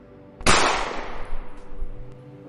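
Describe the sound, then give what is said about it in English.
A single sharp gunshot, fired one-handed, cracks out loudly, followed by a ringing, reverberant decay that trails off over a couple of seconds. No one speaks. “Hand comes out and draw a one-handed shot. Just shoot this person.”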